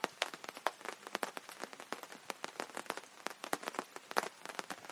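Raindrops patter steadily on an awning, a dense, irregular stream of sharp taps with no voices, like a light but constant rain, not heavy, drumming on fabric overhead.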